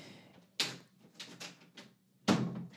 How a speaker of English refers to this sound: If you heard some background door noise right there, that was our four-year-old barging in to find out what's happening with Selena.